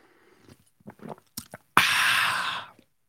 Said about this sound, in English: Here comes the sip of the day.